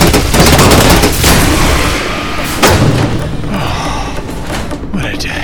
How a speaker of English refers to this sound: It's shooting bullets. Most guns do, Doctor. It's shooting bullets inside a super pressurized high oxygen metal box. Bullets are low impact slugs. They can hit breach anything solid, like a bulkhead. They could definitely breach us.